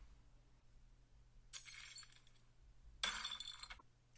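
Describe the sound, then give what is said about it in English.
A glass bottle is broken over a kitchen table, smashing twice in quick succession, each bright, jagged crash followed by a spray of tinkling shards, against a low steady hum, with no voices. “The landlord pulls a glass bottle from out of his pocket and breaks it over the kitchen table.”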